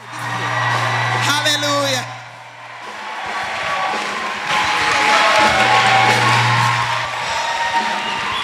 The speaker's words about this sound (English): Hallelujah. That clap was for me.